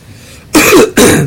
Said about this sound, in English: You would cough less with all the Robitussin you're dropping.